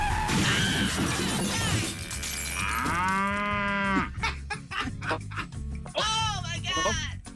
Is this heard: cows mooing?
yes